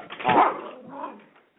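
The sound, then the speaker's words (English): A dog whimpers and whines, wanting to get out of the room, a louder high-pitched cry followed by a softer second whine that trails off, with no one talking. “Sorry, my dog wanted to get out of the room.”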